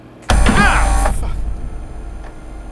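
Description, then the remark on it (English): A printer abruptly whirs to life, its motor rising in pitch with a mechanical churning, then settles into a steady, softer hum as the paper feeds through, printing a contract. “I could have sworn my printer was off.”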